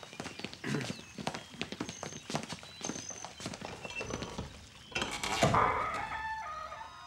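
Horse hooves clip-clop at an uneven walking pace, with thin, high chirping calls layered over the steps and a louder rushing swell near the end.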